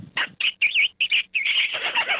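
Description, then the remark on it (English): A person imitates a rabbit distress call, used to lure coyotes: loud, shrill, wavering squeals in quick bursts, about five, running into a longer continuous quavering wail, with no talking. “And it apparently sounds like a rabbit in distress, and it can call in.”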